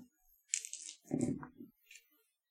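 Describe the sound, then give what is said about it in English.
Dice are rolled during a game, clattering and tumbling across a hard surface in a couple of quick rattling bursts, followed by a faint final click as they settle. No one speaks. “I actually rolled dice this game, but I shouldn't have bothered.”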